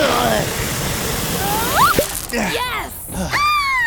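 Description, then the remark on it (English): A steady, hissing rush of gushing water spray, aimed to force a foot stuck in a tree root free, fills the first half, fading as high, swooping vocal exclamations and cries break in over it. “Tank, aim your water over here. Maybe the force of the spray will push Bubbles' foot out of the root.”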